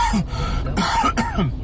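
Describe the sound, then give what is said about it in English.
A few harsh coughs come in quick succession, mixed with rough throat-clearing, loud and alone without any talking. “Got a coughing.”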